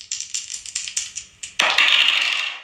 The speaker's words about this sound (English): It's time to roll these dice and see what we going to talk about. Y'all know my slogan. Roll them.